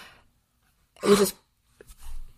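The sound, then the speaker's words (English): A cat sneezes once, a short, sharp burst of breathy noise, followed by a couple of softer snuffling sounds. No one is talking. “Did you hear that? Is my cat sneezing?”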